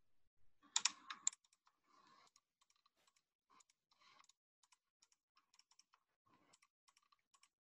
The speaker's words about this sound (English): Is that the mouse? A mouse? Yes. Clicking a computer mouse. What a lame one to end on.